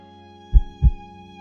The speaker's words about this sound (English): Her heart beat gently, like a tiny drum.